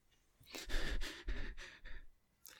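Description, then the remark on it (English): A person demonstrates heavy breathing: a run of four or five loud, raspy breaths in quick succession, then a brief pause and one more short exhale. “Can I demonstrate some heavy breathing?”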